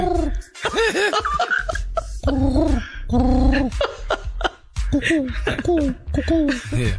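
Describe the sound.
A man vocally imitates an owl, making a string of loud, warbling hoots that swoop up and down in pitch, delivered in repeated bursts with brief pauses and a laughing, throaty quality.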